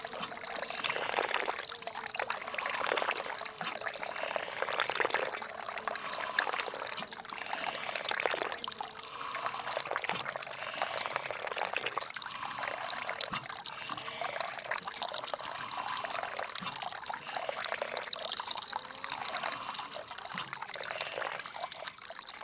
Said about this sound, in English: A short while later, the wind picks up a bit and the windmill begins to turn, followed by spurts of water coming out of the pipe. The honeybees scatter when this happens.